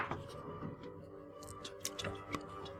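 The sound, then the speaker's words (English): Several quiet, sharp clicks and clatters of dice tumbling across a tabletop, scattered irregularly over a few seconds against a low background hum. “Different dice.”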